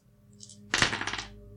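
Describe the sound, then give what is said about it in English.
Dice clatter onto a hard tabletop with a sharp initial thunk followed by a quick series of rattling clicks as they tumble and settle, fairly loud; the dice are rolled for an intelligence check. “Roll me another intelligence check.”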